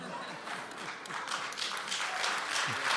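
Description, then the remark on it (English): An audience applauds steadily, a dense crackle of many hands clapping that swells slightly toward the end, with faint voices murmuring underneath. “No, hey man, honestly, I don't need your applause.”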